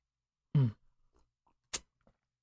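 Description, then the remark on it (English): Someone takes a drink: a low murmured hum, then two short, sharp slurping sips of a peanut butter and jelly flavoured drink, separated by a quiet pause. “And let's have a sip of this drink really quick.”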